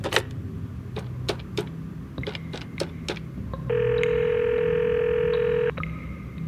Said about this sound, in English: Back in my office, I quickly consulted my computer, then picked up my phone and called the number we had in the system.